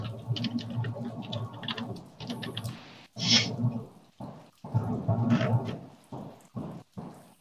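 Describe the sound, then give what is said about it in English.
Two eight-sided dice rattle and clatter in a few bursts separated by brief pauses, a busy, clicking tumble with no talking over it, rolled to determine healing points in a game. “You just roll 2d8.”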